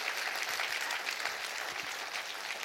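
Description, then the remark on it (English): A crowd claps steadily during a sermon, many hands blending into a dense, continuous patter of applause that stays at an even level throughout, with no voices standing out. “Clap your hands and rejoice with me.”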